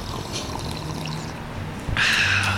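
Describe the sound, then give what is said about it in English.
Near-silent background, then a sudden wet slurping sip of coffee from mugs in the last half-second, as several people in San Francisco sip together on a count of three, bright and airy, with no voices. “Well, before we get too far, can we all take a sip of coffee together?”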